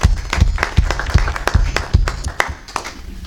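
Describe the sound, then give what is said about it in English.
Audience applause: a steady, dense patter of many hands clapping at once, sharp irregular claps overlapping for a few seconds at fairly even loudness, with no voices. “So let's round of applause for all of them.”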